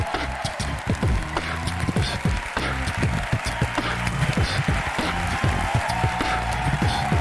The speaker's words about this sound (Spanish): Bueno, damas y caballeros, quiero que le deis un fuertísimo aplauso al mismísimo, el más grande, Jorge Ponce.